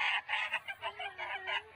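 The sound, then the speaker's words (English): A rat screams in a rapid run of harsh, shrill squeals, about six raspy bursts in under two seconds, loud, with no voices. “That's a rat. That's what the noise they make when. How do they get them to scream?”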